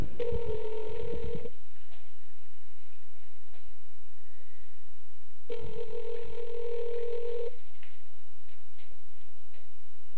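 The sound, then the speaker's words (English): A telephone rings out over the line during a prank phone call, two long buzzing rings about four seconds apart with quiet between them, and nobody picks up. No one speaks. “Come on, answer your damn phone, you piece of shit.”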